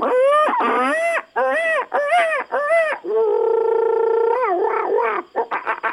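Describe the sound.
A person imitates monkey calls: a string of loud, rising-and-falling whoops, then one long sustained hoot, ending in quick choppy yelps. No ordinary speech is heard.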